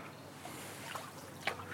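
Gentle water sloshing and dripping over a steady outdoor hush, with a couple of soft paddle splashes as a canoe glides along the calm water of the Somerset Coal Canal on a sunny day.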